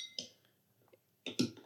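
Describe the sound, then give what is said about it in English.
A metal bottle opener, the opener part of a corkscrew, clinks sharply against a beer bottle cap as a beer is opened at a lake: one bright tap, a few faint ticks, then a cluster of louder clattering clinks. “So what do you use? This. The bottle opener part of it. Okay, I did that.”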